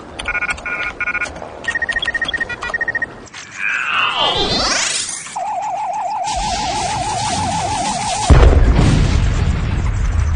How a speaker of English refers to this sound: What just happened? What was the explosion at the aft of the freighter?